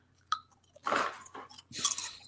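A crisp crunch of a chip being bitten, eaten without dip, followed by a couple of bursts of brittle chewing and crackling, with no talking.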